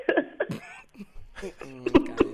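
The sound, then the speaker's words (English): A few short, sharp coughs from a 26-year-old woman, broken by voiced, breathy sounds that edge toward laughter, with no clear words spoken. “I'm coughing”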